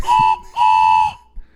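A plastic whistle is blown twice, loud and close: a short shrill blast, then a longer sustained one, with a bright piercing tone and no talking.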